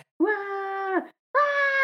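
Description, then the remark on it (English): A person lets out two long, loud sustained screams with a strained, wailing tone, mimicking an emo-style vocal, separated by a brief pause and with no other sounds around them. “I just start screaming.”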